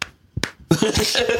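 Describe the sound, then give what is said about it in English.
A hand slaps the bare belly of a 30-year-old man: a quick pair of loud, fleshy smacks, then more slaps mixed with rustling and murmured vocal sounds. “Do you hear that? Hear that belly slap.”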